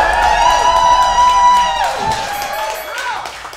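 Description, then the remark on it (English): A live crowd cheers and whoops loudly, with shrill voices rising and falling over a dense roar of many people, continuous throughout before easing slightly toward the end. “Crowd is great.”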